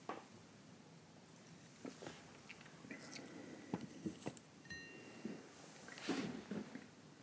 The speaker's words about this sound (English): I'm going to have a sip of this.